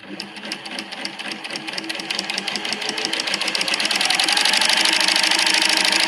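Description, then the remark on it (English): A Porsche's turbocharged engine runs with a rapid, steady mechanical clatter, while a high airy whistle from the turbo swells and grows louder over about six seconds; no voices. “That is what the turbo on the Porsche sounds like.”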